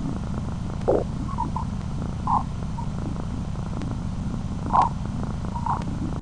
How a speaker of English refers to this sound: And so using similar techniques to before, capturing the data and then turning that into sound that is within the range of human hearing, we can listen to those particles that form the solar wind. And what we end up with is a kind of eerie chatter.